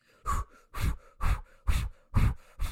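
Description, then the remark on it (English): Heavy, rhythmic Lamaze-style breathing from a man: about six forceful breaths in quick, steady succession, fairly loud, with short pauses between them and no talking. “And then he goes into really heavy Lamaze breathing.”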